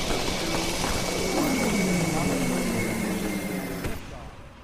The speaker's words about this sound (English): 15, 13, 12, 11, 10. We are go for main engine start. 8, 7, 6. We have main engine start. 3, 2, 1.